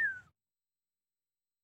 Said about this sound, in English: That was an interesting whistle.